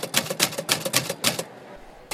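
A typewriter clacks in a quick, steady burst of about a dozen sharp keystrokes, fairly loud, then pauses briefly before one more strike. No voices are heard.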